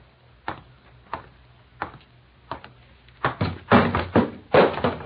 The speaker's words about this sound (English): Oh... She knocks over ashtrays, too, eh? Well, I'm sorry. I'm sure. I didn't see it. You'd better get out of here. Your spring breeze is too much like a tornado.